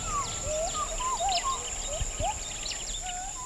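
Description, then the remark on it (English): Gibbons call from a distant stand of forest, heard from a roadside stop where the forest has been burnt away. There is a series of rising and sliding whoops repeating every half second or so, over scattered high chirps and a steady, thin insect whine. “In a distant stand of forest, we hear gibbons.”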